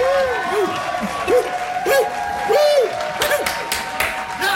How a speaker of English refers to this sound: Crowd's going wild over here. They always do. I know. They love this round.